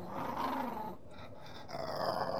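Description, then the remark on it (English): A large dog or coyote growls, a low, continuous, rumbling snarl that eases briefly in the middle before swelling again, with no voices. “I'm looking at a dog. Or like a coyote. I thought coyotes were smaller. This one seems a bit big. And pissed.”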